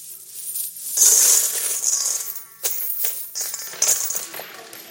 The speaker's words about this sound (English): Okay, it's banging. It's like the coins start ding, ding, ding, ding, ding, ding, ding. All these coins going in.